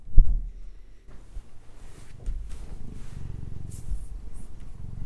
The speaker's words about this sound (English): Can you hear that big purr?